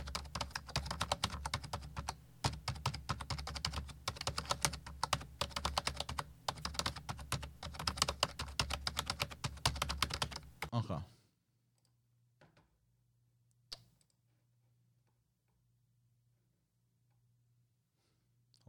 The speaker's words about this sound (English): Okay, I found the keyboard. So let's do a quick search.